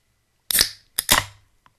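A cold drink can being cracked open: a sharp metallic click followed by a short fizzing hiss, repeated twice in quick succession, with a faint tick at the end.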